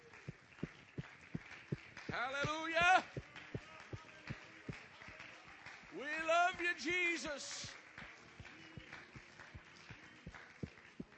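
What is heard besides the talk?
audience clapping hands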